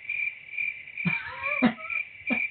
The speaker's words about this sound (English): Okay, here's my cricket soundbite.